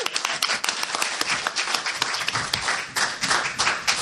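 A crowd applauds steadily, dense overlapping claps at a fairly loud, even level for several seconds, with no voices standing out, welcoming a speaker's wife on stage.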